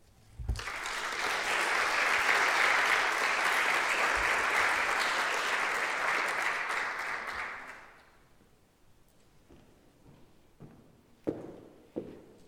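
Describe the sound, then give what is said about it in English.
A crowd breaks into loud, sustained applause for five storytellers that holds steady for several seconds, then fades out, leaving a few scattered thumps and taps in the quiet afterward. “Would you all join me in applauding our 5 storytellers one more time?”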